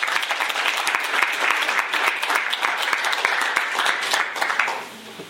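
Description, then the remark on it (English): An audience applauds steadily for the speakers, many hands clapping in a dense, crackling patter that holds a fairly even loudness before thinning out in the last half second. “So, no further ado, please give our speakers a warm round of applause.”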